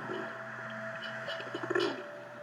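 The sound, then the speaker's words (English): A pigeon coos softly in low, throaty murmurs that rise briefly near the end, set against a steady low background hum, with no one speaking. “Oh, hey there, little pigeon. My, my, you're awfully friendly, aren't you?”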